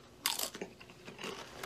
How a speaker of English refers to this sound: It crunches. Good combination for your chips right here.